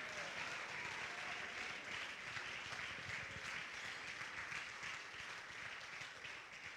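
A church audience at the Anchor Church claps steadily and loudly on their feet, a dense wash of hand claps with scattered shouts and cheers rising through it, sustained without a break for about seven seconds, as they shout that God has restored them.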